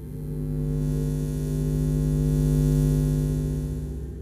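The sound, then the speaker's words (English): A steady, low electrical hum resonates through a house, with a faint higher buzz above it, swelling slightly midway and holding for several seconds with no voices present. “At the same time, he heard a low hum that seemed to resonate through the house.”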